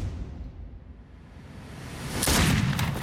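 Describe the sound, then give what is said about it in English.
Low, rumbling background gives way to a single loud cannon boom partway through, as two British ships attack New York City on July 12th, followed by a roaring, crackling rumble as it fades out; no voices. “two British ships attack New York City. Washington's cannons can do nothing to repel them.”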